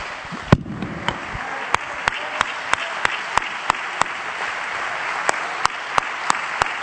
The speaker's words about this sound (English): Come on, you ought to clap your hands because you know it's the truth.